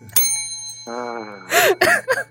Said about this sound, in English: Just going to ring the bell on everything today.